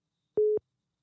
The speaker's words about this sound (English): I hear something. Somebody's phone beeping. Might be mine. I don't know.